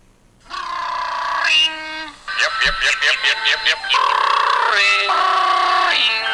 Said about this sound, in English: That's my ringtone.